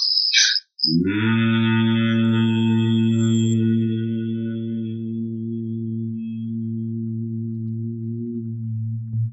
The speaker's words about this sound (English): Then take a deep breath into your belly and lungs so that we create space for then the vibrations to move through. Open the channels. And then inhaling again and exhaling a hum.